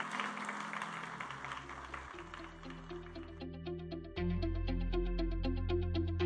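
An audience at New Beginnings Church, giving the Lord a hand clap after a prayer at a morning service, breaks into steady hand clapping, a dense wash of applause that gives way to keyboard music with sustained bass notes, while rhythmic claps continue over it.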